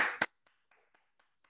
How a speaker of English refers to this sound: So help me welcome, give a big round of applause for Mr. Andre C. Hatchett, ladies and gentlemen.